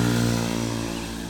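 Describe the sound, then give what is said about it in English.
A scooter engine passes by, a loud buzzing drone with steady harmonic whine that gradually fades as it moves away over about a second and a half. “excuse me, I'm gonna let this scooter ride by.”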